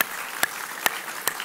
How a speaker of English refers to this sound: Yeah, give Tim a round of applause.